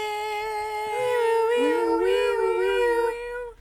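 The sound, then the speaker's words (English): A loud alarm sound effect, inserted after the words "straight man": a sustained, buzzy wailing tone whose pitch wavers and bends slightly, holding steady for about three and a half seconds before cutting off, with no talking. “And put an alarm here. Anytime we say straight man, put an alarm.”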